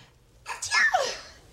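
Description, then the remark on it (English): A single sharp sneeze, fairly loud, bursting out after a brief intake of breath and trailing off quickly into quiet. “Bless you.”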